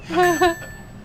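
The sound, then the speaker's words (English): A small bell rings twice in quick succession, bright, its high metallic tone lingering and fading out after the second strike, with no talking. “I'll do a little bell ringing every time you say it from this point.”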